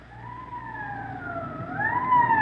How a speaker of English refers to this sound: Code 3, that means red light and siren.